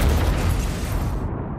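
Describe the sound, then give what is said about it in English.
A loud gas explosion with a deep, rumbling boom fills the whole clip, its roar sustained and the crackling upper edge fading toward the end. No voices are heard. “It was a gas explosion?”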